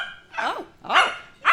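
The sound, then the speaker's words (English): A voice imitates a dog barking, as Tweety appearing as Dorothy's dog Toto, giving three short, loud, yappy barks in quick succession, with no other talk. “Oh, and Tweety makes an appearance as Dorothy's dog, Toto.”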